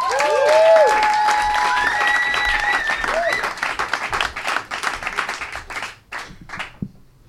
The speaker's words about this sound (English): Give her an applause for the very funny